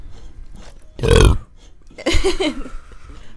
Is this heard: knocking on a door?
no